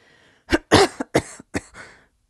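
A woman coughs in a rapid, hacking fit of about five or six harsh bursts, fairly loud, with brief gasping pauses between them and no speech.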